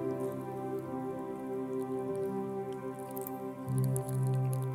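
Liquid trickles and splashes steadily into a small communion cup during a church communion, fairly quiet, over a soft bed of sustained musical tones, with a fuller pour near the end.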